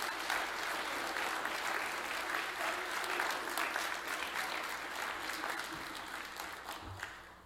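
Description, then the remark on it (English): Sustained applause from an audience at Rehoboth for the seniors, a dense steady patter of many hands clapping that holds strong throughout and only slightly eases toward the end. “Before I get started, can we give the seniors a round of applause for a great job they did?”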